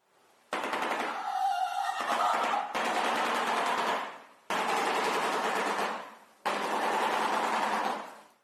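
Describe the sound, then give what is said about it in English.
A shoebill stork clatters its bill in four loud, sustained bursts of rapid, machine-gun-like rattling, each lasting about two seconds with brief pauses between. No voices are heard. “But the clapping sound is basically the most dramatic. It sounds like a freaking machine gun.”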